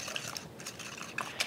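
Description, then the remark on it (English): Cake batter of sugar, canola oil and vanilla being whisked in a bowl to combine it: a steady wet, squelching scrape with a few sharp clinks of the whisk against the sides, soft and continuous with no talking. “Now I'll give this a whisk, get it all combined, splash it all over myself as usual.”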